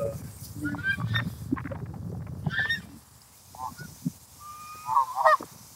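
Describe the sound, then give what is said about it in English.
Geese honk and quack in a noisy cluster, with several loud, nasal calls over a low rumble of background noise, then scattered honks trailing off near the end. “acting strangely, just quacking around. Look at that bird right there with its mouth right open right there.”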